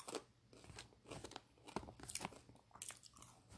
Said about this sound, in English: I'm just crunching in your ears, sweetie.